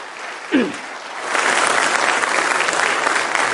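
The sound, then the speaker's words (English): A church audience bursts into steady applause thanking a couple for many years of running the church library, dense overlapping clapping that swells after a brief start and holds at a fairly loud, even level, with a short low vocal sound just before it builds. “I think that applause is well deserved.”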